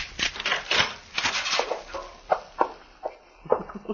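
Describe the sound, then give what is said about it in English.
A key is poked out of a door keyhole from the other side of the door: scraping and rattling metal, then several sharp, separate clicks and clinks, with no one speaking. “Well, these keys are made so you can push them right out.”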